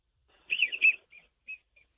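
Wigeon ducks whistling during a duck hunt: a burst of high, breathy whistled calls, followed by three shorter, fainter whistles spaced out with pauses. No voices are heard.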